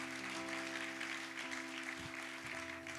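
An audience claps and cheers steadily for the full few seconds, a dense wash of applause at an even, moderate level with a faint steady hum beneath it.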